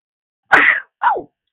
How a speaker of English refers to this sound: Wait 1 second, I gotta sneeze.